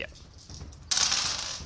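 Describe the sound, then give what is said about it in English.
A sudden burst of bright, rattling clatter as a handful of eight-sided dice tumble across a table, rolled to cast a sleep spell in a tabletop game, starting after a quiet moment and continuing steadily to the end, fairly loud. “Whoa, that's a lot of 14, dice.”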